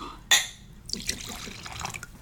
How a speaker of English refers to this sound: Okay, so there's more whiskey being poured. This is fine. There's plenty of whiskey to go around. It's a very good 15 as well. It is. So it's finished in bourbon and sherry casks.